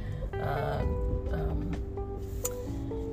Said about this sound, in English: Sorry, guys, you're hearing a very snazzy Harley Davidson pass by.